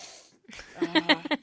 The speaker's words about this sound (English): It was the disgusting sniff where you just suck the phlegm down your throat. Mm. And as someone who hates phlegm, I shouldn't be doing that.